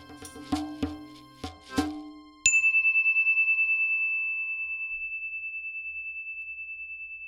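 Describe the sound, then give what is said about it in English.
A few short tuned notes lead into one clear bell strike, whose bright tone hums with a gentle wavering pulse and slowly fades over several seconds in otherwise quiet surroundings. “You listened to the whole story from bell to bell.”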